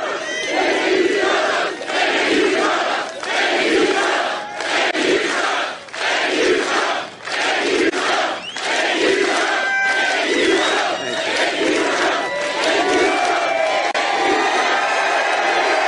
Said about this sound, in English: Yeah. Thank you, Trump, says the crowd at the rally in Illinois.